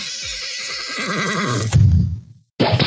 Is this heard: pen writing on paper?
no